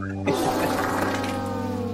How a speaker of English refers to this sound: So, man, I tell you, that wet fart at the end is hard to hear. It's you're going to need a new pair of trousers after that one.